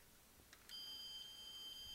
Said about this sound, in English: When you open the door, that door, it honks. When you open this door, the alarm goes off. The headlights and the taillights also flash.